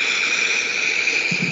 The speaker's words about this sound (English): In through the nose, all the way to your toes, breathing out like through a straw.